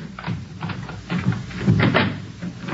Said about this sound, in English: Oh, all right. Let me get the door open.